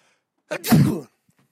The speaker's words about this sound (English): When I sneeze, it's very loud, and apparently it's very disturbing, and people get upset.